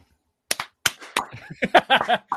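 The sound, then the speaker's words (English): Three sharp, loud hand claps in quick succession, trying to trigger a clapper to turn the light on after a power loss, followed by a short stretch of voiced, speech-like sounds. “Try the clapper.”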